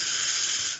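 A single deep, breathy exhale: a steady airy hiss lasting under a second that trails off at the end, with no voices.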